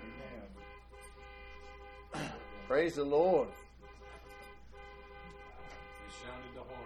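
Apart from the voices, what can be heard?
car horn honking outside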